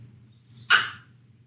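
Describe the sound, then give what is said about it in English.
A single short, sharp dog bark rings out once over a low steady background hum, with no one talking. “Sorry, my dog has let his needs be known.”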